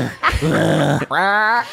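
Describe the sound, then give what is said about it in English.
Someone imitates an angry hiss, but it comes out voiced and throaty: a short grunt, a raspy growl, then a strained, wavering yowl, alone without talk. “Wait, so is that you hissing?”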